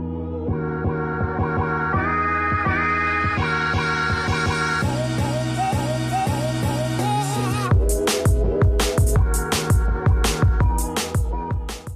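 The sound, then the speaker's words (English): Loud, upbeat instrumental music with steady rhythmic chords, shifting into a fuller section with punchy drum hits for the last few seconds. No voices. “All right, cue the music.”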